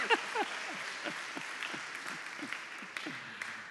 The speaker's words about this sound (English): And you didn't notice it because you were already clapping, but actually, my name was pronounced in the right way.